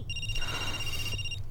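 A telephone rings with a steady, bright electronic trill lasting over a second, clear above a low background hum, with no one speaking.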